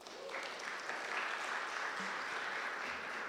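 A crowd claps steadily for a few seconds as a person is invited up to read Psalm 104, a dense, even patter of many hands without a clear rhythm, holding a fairly constant level throughout with no talking over it.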